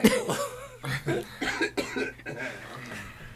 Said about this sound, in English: Nah, you coughed. We saw it. We heard it.